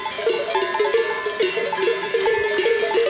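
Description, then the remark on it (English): Several cowbells clank and ring continuously in an irregular, overlapping rhythm, as if worn by cattle milling about, with no voices present; a field recording of cattle by an artist used in the piece. “I think … is an imprisoned human heart crying out to prisoner cattle, I feel what you feel.”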